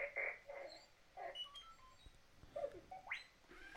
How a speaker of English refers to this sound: And you can get an extra chip, personality chip, which we didn't get, but the personality chip would make him beep differently.